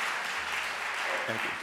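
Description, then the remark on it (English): A church audience breaks into steady, dense applause for the speaker's seminary graduation and welcome into preliminary fellowship by the UUA, many hands clapping together in a continuous wash of sound with a low hum underneath and a brief voice near the end. “And you're allowed to applaud that.”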